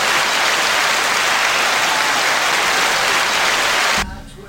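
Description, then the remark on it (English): Loud, sustained crowd applause, a dense wash of clapping that holds steady for about four seconds and then cuts off abruptly, leaving a brief quieter murmur. “let's have a big hand for our sponsors.”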